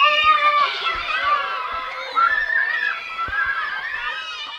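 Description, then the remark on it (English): A crowd of children shrieks and shouts at once in high, piercing, overlapping cries, with scattered giggles and footstep thumps beneath the steady, loud din of play. “Ready, set, screaming.”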